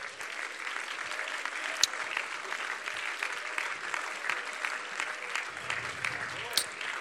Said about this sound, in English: Thank you, Jesus. Clap your hands to the Lord.